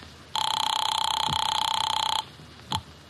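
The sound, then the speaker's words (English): A hotel telephone bell rings for a call put through by the operator, in one steady, bright, rattling burst of about two seconds, then cuts off, followed by a short clipped blip of ring a moment later. No one speaks. “You get Mr. Veek on the phone.”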